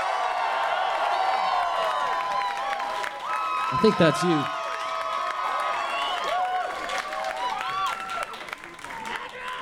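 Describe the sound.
An audience applauds and cheers steadily throughout as a guest is welcomed out, with high whoops and shouts rising over dense clapping. A voice speaks briefly midway through the noise.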